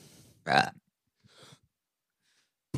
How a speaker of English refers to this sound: Do you want to burp or double it and pass it to the next one?